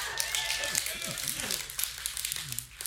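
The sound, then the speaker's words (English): An audience claps in church in a busy, uneven patter of sharp hand slaps, mixed with loud overlapping voices and shouts that rise and fall throughout. “Those people that are clapping, they used to be really miserable.”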